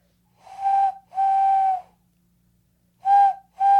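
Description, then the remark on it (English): A person imitates a train whistle by licking the sides of the thumbs, rubbing them together, cupping the hands and blowing into them, giving four hooting blasts in a long-long, pause, short-short pattern, fairly loud with a breathy, tonal quality. “Yeah, you want to hear my train whistle?”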